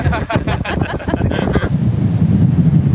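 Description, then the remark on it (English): Strong wind from a windstorm roars and buffets the microphone at a beach where people are swimming, with choppy bursts of surf at first giving way to a steady, loud low rumble of wind and waves. “Some people chose to put on bathing suits and dive in, the windstorm providing the perfect beach day.”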